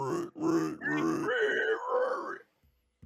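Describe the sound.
A person imitates a pig with loud, throaty grunts and squeals, a few rough bursts followed by a longer wavering snort, then silence.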